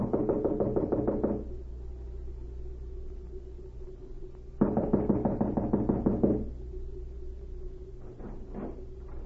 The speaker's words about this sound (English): An hour later, the spy cavalier knocked at the door of a small cottage and was admitted.